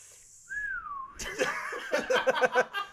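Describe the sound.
A person whistles a quick slide-whistle imitation, one smooth pitch that swoops up and then glides downward for about half a second, followed immediately by bursting laughter.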